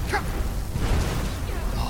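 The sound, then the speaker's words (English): Video game explosions from fireballs thrown by an enemy rumble in a dense, low, booming wash that stays fairly steady in loudness, with a couple of brief bursts breaking through over about two seconds. “He is throwing fireballs. That is what those explosions are, ladies and gentlemen.”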